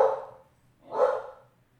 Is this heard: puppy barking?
yes